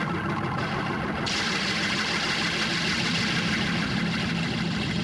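A loud, continuous roar of clanging spring-reverb noise as the organist rocks the organ back and forth, making its reverb springs clang together, dense and rumbling with no clear pauses, brightening slightly after the first second.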